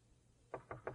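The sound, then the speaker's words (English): Three quick knocks on the front door of a home, evenly spaced, come after a brief stretch of quiet room tone. No one speaks. “If someone walks up to the door of your home and knocks on the front door,”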